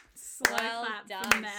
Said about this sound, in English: Slow clap for Mel.